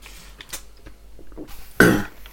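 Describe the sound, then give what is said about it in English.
A single sharp, loud cough bursts out near the end, following a couple of seconds of quiet shuffling and breathy noises. “How dare you cough?”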